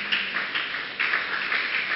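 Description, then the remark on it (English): A church audience clapping their hands for Jesus in a dense, steady wash of applause, with slight surges in intensity, lasting the full two seconds without any voices. “Church, say amen. Clap your hand for Jesus.”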